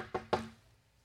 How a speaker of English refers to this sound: A knock on the door. I thought it was real, but it was a dream because I heard a voice.